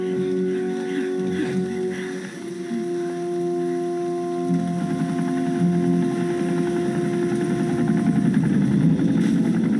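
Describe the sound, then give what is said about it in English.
A helicopter's engine and rotor drone steadily and loudly on an island, with a sustained whine over the throbbing hum, growing fuller in the second half. “When are we gonna get off this island? Go to the helicopter and you might.”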